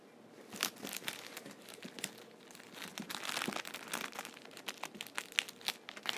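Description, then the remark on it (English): Paper crinkles and rustles steadily as it is unwrapped from a delivered box, with dense, irregular crackling bursts, fairly quiet, no voices heard. “Oh, what is this? I don't know what this is. Paper.”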